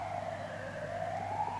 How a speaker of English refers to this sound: can you hear those sirens in the background?